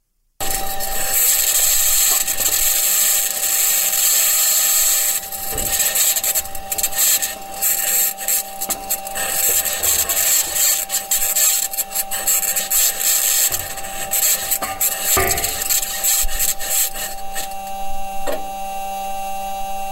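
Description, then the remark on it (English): A NASA Mars rover rolling across the surface of Mars: a continuous, loud mechanical grinding and scraping with steady whining tones, creaks and occasional sharp clanks, and no voices. “But anyway, NASA released some audio of what this thing sounds like as it's rolling around the surface of Mars.”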